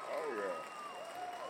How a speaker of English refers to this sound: Folks, we have a surprise guest. We gotta wait till the crowd calms down.